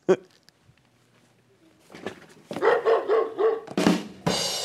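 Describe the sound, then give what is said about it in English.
A dog-bark sound effect marking Petco, whose stock ticker is WOOF: several barks in a quick, steady series, fairly loud, followed by a brief burst of noise at the end. “And that's the aptly tickered woof.”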